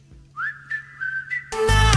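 A bright whistled melody glides and holds over a soft background hum, then a full, loud pop backing track bursts in after about a second and a half; the opening of a pop song from the film Trolls World Tour.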